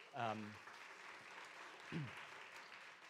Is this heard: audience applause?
yes